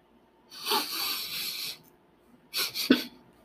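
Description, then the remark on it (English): Sniffing: a drawn-out airy, hissy intake of breath, a short pause, then two quick sharp sniffs in a row. No one speaks. “I was wondering why you were sniffing.”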